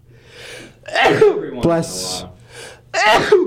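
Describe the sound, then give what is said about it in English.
A single sharp sneeze bursts out mid-clip, its breathy hiss trailing briefly, with people talking just before and right after it. “Bless you.”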